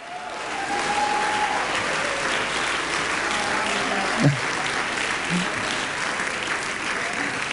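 A church audience claps and cheers for God during worship in a dense, steady roar of applause that holds for several seconds, with scattered whoops and a brief sliding shout rising out of the crowd.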